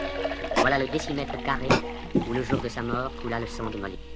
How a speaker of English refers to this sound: It's a boozer theme music now. I feel like we should listen. Let's run this real quick